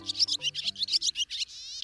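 Bird song: about ten bright, high chirps in quick, even succession, ending in a longer buzzy trill, with soft low sustained tones underneath.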